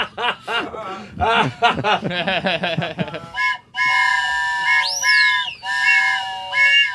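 A burst of chuckling gives way to a long, steady, high whistle-like tone that swoops upward once, pauses, then resumes, a voice imitating a train whistle.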